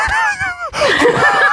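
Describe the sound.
A voice imitates the breathless, terrified scream made when waking up from screaming in sleep: a strained, wavering high-pitched cry for about half a second, breaking into a harsh, airy, breathy rasp that carries on loudly.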